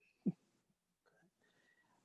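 A single deep, muffled heartbeat thump lands near the start, fairly quiet, followed by faint low murmuring and background noise with no further beats.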